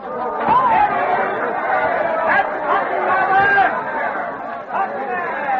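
A crowd of Boston townspeople gathered below an open window murmurs steadily, many indistinct voices blending into a continuous babble that swells slightly at moments, with no single speaker standing out.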